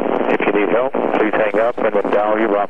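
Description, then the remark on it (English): A recorded telephone message saying "If you'd like to make a call" plays over a narrow, tinny telephone line, with a steady crackly static hiss running under the words throughout. “You know, there shouldn't be any static when they say that.”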